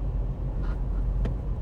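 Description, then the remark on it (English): A steady, low car engine rumble while stuck in traffic, with a couple of brief passing swishes from other traffic. No voices, just a continuous idling drone. “Stuck in traffic.”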